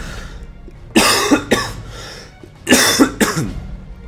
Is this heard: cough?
yes